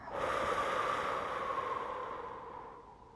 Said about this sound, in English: Slow and deep breath in. Open mouth. Exhale. Let it all go.